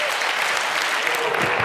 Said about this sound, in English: And I want you to give him a round of applause this morning.